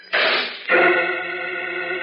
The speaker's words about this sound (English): The metal door to the machine clangs shut on Jim Olsen and Professor Fields.